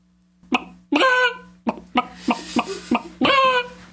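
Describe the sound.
A person's voice imitates a chicken, giving a series of short, clipped clucks followed by two longer, drawn-out squawking calls, loud with brief pauses between.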